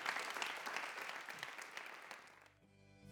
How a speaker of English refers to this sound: Would you give the Lord a great hand clap for his word?